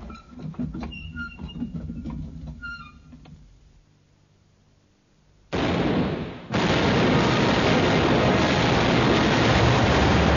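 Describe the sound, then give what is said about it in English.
Ship's cannons firing at an approaching Spanish vessel: after a quiet pause, a sudden loud blast bursts out, dips briefly, then gives way to a sustained, roaring barrage of heavy gunfire that continues to the end. “Gun captains! Aye. Run up, train, and fire as you get the aim.”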